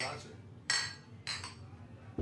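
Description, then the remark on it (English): Beer glasses clink together in a saloon, in a toast to hot summer days: two bright, ringing clinks close together, then a third short tap. “just toast for the hot days, the summertime, the swimming pools, and of course the air condition, because I don't think any of us would live in Houston without it.”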